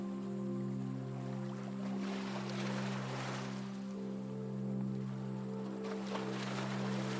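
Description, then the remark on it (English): Small waves on a lake made choppy by wind wash and lap in soft, uneven surges against the shore, with a steady low hum running underneath throughout. No one speaks. “And small waves are lapping the shore.”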